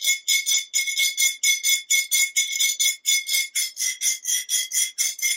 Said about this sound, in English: So you might just make a sound like... And that's just a piece of metal against glass, and the glass has got some labels on it, and that's what's giving a nice kind of